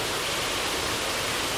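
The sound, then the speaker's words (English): An artificial waterfall under a huge indoor dome recreating a South American jungle roars steadily beside a bridge over a small pond, a dense, unbroken rush of falling water with even loudness throughout and no voices or other sounds. “And I'm looking at this artificial waterfall and a bridge that extends over a small pond.”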